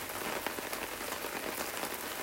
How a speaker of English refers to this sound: Here I am in the rain. Having fun.